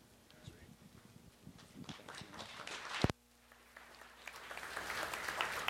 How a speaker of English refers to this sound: Boy, that's twice I've got an applause. That's amazing. Oh, I'm so embarrassed right now.